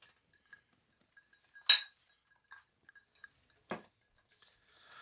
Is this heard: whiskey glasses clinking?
yes